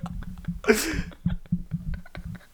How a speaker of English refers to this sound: Oh, did you fart in your microphone again? God damn it, dude.